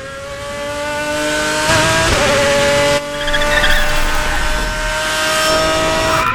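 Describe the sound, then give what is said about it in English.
A supercharged race car roars into a parking lot with loud, sustained tire screeching, the high squeal holding steady over the engine's rumble, with a brief dip before the skid continues. “But it starts with this guy who's going to be talking to us, screeching into the parking lot in some supercharged race car thing.”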